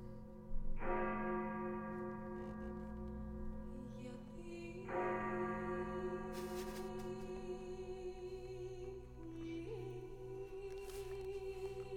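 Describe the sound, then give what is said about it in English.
The opening of a recording of a Byzantine lament chant for Constantinople: two deep, resonant bell tolls ring out a few seconds apart, each fading slowly over a sustained droning tone that later steps up in pitch, with a solemn, reverberant feel. “All right, so this is the Byzantine chant, the lament for Constantinople.”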